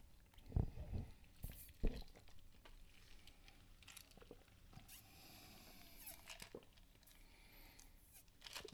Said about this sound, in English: I was trying to get to the bottom of that, and it just never got to the bottom. I took about 6 sips.